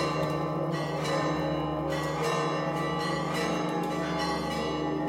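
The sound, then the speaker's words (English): Bells of the Church of the Holy Sepulchre ring continuously in a dense, overlapping peal, signaling a changing of the guard between Christian sects; sustained metallic tones layer over one another with periodic fresh strikes, loud with no voices present. “The bells are signaling a changing of the guard of sorts.”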